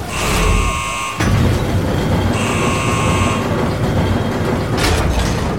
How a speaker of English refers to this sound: Attention, please stand clear. Sealing hydroponics pressure doors in 3, 2, 1.